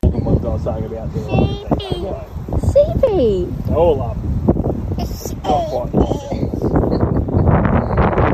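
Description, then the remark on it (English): Gusty wind buffets the microphone with a constant low rumble throughout on a family property with sheep, while a small child's high voice chatters and sings over the noise. “Again, it's quite windy.”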